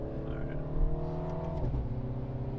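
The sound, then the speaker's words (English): A car engine drones steadily from inside the cabin as it pulls hard under load to pass two very slow-moving trucks on a road with no other cars, its pitch dipping briefly partway through as if shifting gears, then carrying on. “We just passed two very slow moving trucks.”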